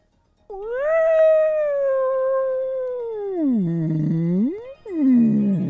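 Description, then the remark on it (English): A single long, moaning vocal cry imitating a whale call, sustained for several seconds as it glides slowly downward, dips low, then swoops back up, loud with no talking. “Oh, it's a whale noise.”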